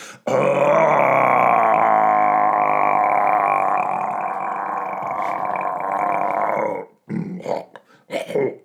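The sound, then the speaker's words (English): A person imitates a lion's roar with one long, loud, rumbling growl held for several seconds, then a few short, gruff vocal bursts. “The noise of a lion.”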